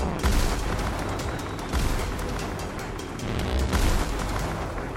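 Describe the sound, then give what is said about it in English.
Heavy cannon fire from Orion cannons aimed at attacking airships rumbles in dense, overlapping bursts, deep booms swelling and fading in waves over a continuous roar, like a sustained artillery barrage with no voices. “Sir, the Orion cannons are ineffective.”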